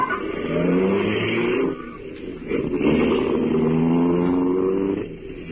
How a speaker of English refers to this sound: Slammed the door shut. Got in alongside of me. And we drove off.